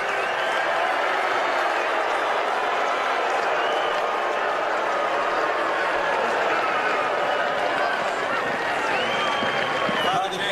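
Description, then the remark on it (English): A large crowd at an event with Vice President Pence boos people walking out, a steady, dense roar of many voices holding at an even loudness for about ten seconds, with scattered shouts and clapping mixed into the din. “If you listen closely, you can hear the booing.”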